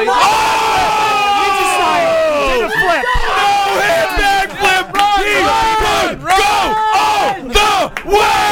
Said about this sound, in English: And the crowd is actually going wild. They love him.